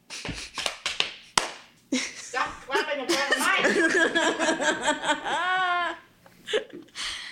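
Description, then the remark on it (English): Several loud, sharp hand claps land right at the microphone in a quick, uneven burst, then give way to laughing and high-pitched, whiny vocal sounds. “Stop clapping at that mic.”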